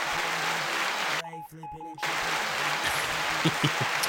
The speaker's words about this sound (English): Oh, not laughter. There we go, applause.